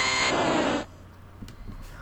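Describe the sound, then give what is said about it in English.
A harsh, buzzy electronic Venusaur cry from a video game blares loudly for under a second, rich and grating, then cuts off abruptly, leaving a few faint soft knocks. “Hear that distinct Venusaur roar.”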